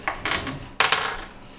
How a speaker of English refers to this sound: All right, dice, d20 roll. Which dice are needed? You need a d20. So just that, and then get the little bit.